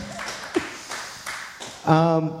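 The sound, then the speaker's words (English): An audience applauds with a steady wash of scattered clapping and a few sharper claps standing out, then a voice calls out over it near the end. “So give yourselves a round of applause, first of all.”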